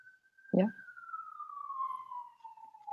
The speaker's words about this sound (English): I thought that was outside my house at once. I'm like, no, there's an ambulance going around.